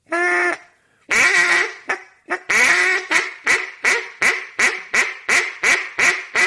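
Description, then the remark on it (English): A duck call gives a long drawn-out quack, a few short blats, then a steady run of about ten loud, evenly spaced hen mallard quacks that taper off slightly, the call blown a little harder for the hen quacks. “You're blowing a little harder when you go to blow your hens.”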